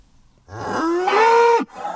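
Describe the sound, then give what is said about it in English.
A single loud, drawn-out cow moo lasting about a second, rising slightly in pitch before cutting off, followed by faint background noise. No one speaks. “No, that isn't Psycho Cow.”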